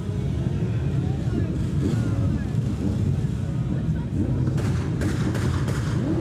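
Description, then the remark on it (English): A quick cluster of sharp gunshots cracks out near the end, set against a constant heavy low rumble like engines or explosions, with indistinct voices murmuring underneath. “Those gunshots I hear.”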